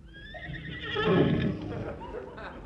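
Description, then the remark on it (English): A horse whinnies, a single drawn-out neigh with a wavering, rising and falling pitch that swells loudest midway before trailing off, heard on its own, out on green grass in the moonlight. “The poor horse likes it here.”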